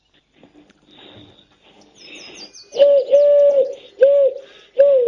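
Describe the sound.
Someone blows through cupped hands to imitate a wood pigeon, producing four loud, hollow, breathy hoots in an uneven rhythm. Quieter rustling and faint chirps come before them.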